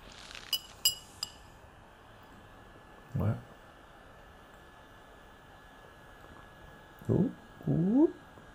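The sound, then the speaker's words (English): Three quick, bright glass clinks ring out in succession at the start in a toast with liqueur on a very hot day, followed by a few short murmured vocal sounds with rising pitch over a steady low background hum. “Salute, gang.”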